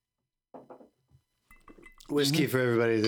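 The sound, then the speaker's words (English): Glasses of whiskey clink together in a brief, bright toast amid quiet murmuring, then loud excited voices burst in and fill the rest of the moment. “Cheers. God damn it. Pre-show shot. Bottoms up, boys. Whiskey for everybody today?”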